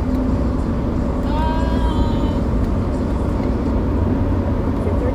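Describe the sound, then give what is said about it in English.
Steady, heavy road rumble from inside a moving vehicle on a highway, with a brief rising whine as a large semi truck passes. No one speaks. “We're on by a semi. Okay, we're back. We're past the semi.”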